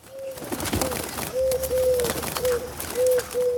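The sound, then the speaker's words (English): A wood pigeon coos in a steady, repeating rhythm of soft hooting phrases, clear, over a hissy outdoor background with no one speaking. “Ah, it's on the back of a wood pigeon.”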